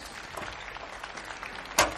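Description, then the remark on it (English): During a sermon, a crowd claps for the preacher's daughter in a steady, dense patter of many hands, moderately loud and without voices, with one sharper, louder burst of claps near the end. “So one more round of applause for my daughter.”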